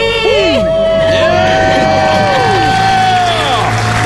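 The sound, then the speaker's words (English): After a countdown, several voices let out a loud, sustained scream together celebrating being debt-free, rising into joyful shouting and whooping over background crowd cheering, energetic for a few seconds. “Let's hear a debt-free scream.”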